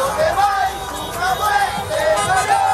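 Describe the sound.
A large flag-waving protest crowd of Cuban Americans in the major streets of Florida, protesting in solidarity with the anti-government protests in Cuba, makes a dense, steady roar of many overlapping voices, with rising shouts and chant-like cries rippling through the loud babble for the whole stretch.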